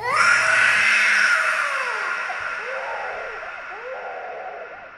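A person screams, long and shrill, in continuous wails that rise and fall in pitch. The screaming stays loud and close throughout, with no talking.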